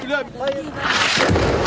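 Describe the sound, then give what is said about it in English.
A raised voice calls out briefly, then loud gunfire from Israeli forces breaks out, a dense, crackling burst of shots that continues steadily to the end, while an ambulance crew works to free a wounded woman from rubble. “This time, the Israelis are shooting, but the ambulance crew is determined.”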